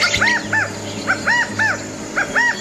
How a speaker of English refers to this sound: Is shaped like a 10-inch long football with a plume on top pointing to the goal line, is believed to lay up to a dozen eggs, but often incubates more than twice that many. Well, the bird is the California quail.